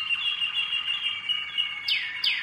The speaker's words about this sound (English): Some birds sing, you know, 13, 14 different songs, and whether they'll sing them all in one day is depends on the bird.